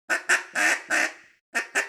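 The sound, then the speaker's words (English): Loud duck quacks practiced as a calling cadence in a clear pattern: two short, quick quacks, then two longer drawn-out ones, a brief pause, and two more quick quacks. No talking. “So just like you want two fast quacks, two slow quacks.”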